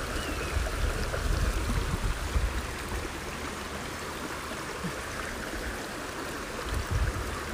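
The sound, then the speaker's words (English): A steady, close rush of stream water tumbling over rocks, heard from a log beside the stream, a dense continuous wash of splashing and gurgling that holds an even level throughout with no voices. “I can almost feel the mist on my skin from the water going over the rocks.”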